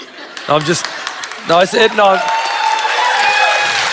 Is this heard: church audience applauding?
yes